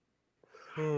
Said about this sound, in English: No, the yawning was unnecessary, you jackasses.